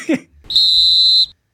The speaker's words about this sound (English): did you name a specific make and model of whistle? Yeah, the Fox 40, the Cadillac of whistles.